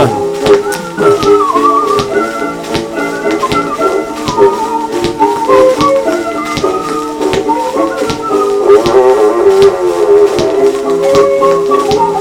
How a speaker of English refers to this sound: He's actually whistling on this. Yeah. It's pretty nice whistling. Really? I wish I could whistle. This is like acoustic, so it sounds really good for acoustic recording, actually.